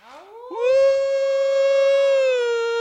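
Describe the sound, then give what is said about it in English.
Two people imitate a wolf howl in unison: a rising swoop that settles into one long, steady, loud tone held for a couple of seconds, with no other sound. “Now what he and I just did there was in unison. I tried to imitate exactly what he was doing.”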